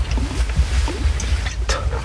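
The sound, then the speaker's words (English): Water sloshes around in a container with low, rumbling swishes and a few irregular gurgles, ending in a brief sharper splash; no one speaks. “You hear that? That's the water.”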